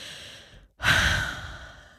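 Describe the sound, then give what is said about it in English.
A brief inhale cuts off into a moment of silence, followed by a long, loud, breathy exhale that slowly fades, like a deep sigh, as someone takes a big breath demonstrating the balloon breathing technique. “Technique number one, balloon breathing. Just taking a big breath.”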